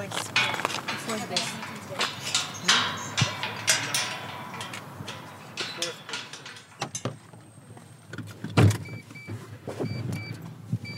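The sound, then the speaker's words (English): Interior of a moving Mitsubishi Colt: steady road and engine rumble with scattered clicks and knocks, a brief window-motor whir, and faint muffled voices underneath. “We kept this car just for the fishing before the war.”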